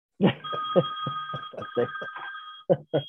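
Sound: phone ringing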